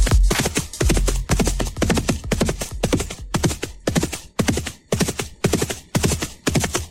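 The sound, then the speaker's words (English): A steady, galloping clip-clop of horse hooves, about two beats per second, loud, as if riding a horse to the store. The voiced, tonal quality suggests a person imitating the hoofbeats with their mouth. “running to the store on a horse.”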